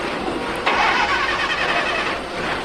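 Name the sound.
car engine starting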